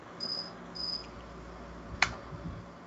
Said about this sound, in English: So those who are listening right now on our feed here, here's chirping. I am outside recording because that's where the best internet signal goes, and unfortunately there is a cricket who decides it wants to follow me around